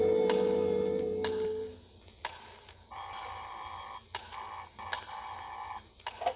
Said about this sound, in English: But you know better than to ring the phone now.